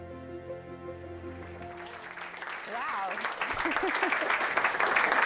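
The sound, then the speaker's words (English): An audience at a Marketing Meetup event breaks into applause for a speaker that swells steadily louder, with a few voices cheering through it, after a sustained musical tone fades out at the start. “Best round of applause I've ever had.”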